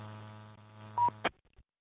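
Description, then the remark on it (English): A single short, high-pitched electronic beep from an amateur radio repeater rises over a steady low buzzing hum, heard on a Radio Shack handheld with a 5/8 whip antenna about 6 miles inland, followed by a sharp click as the transmission cuts off into silence. “Yeah, I heard a beep there, so hopefully you're able to hear me okay.”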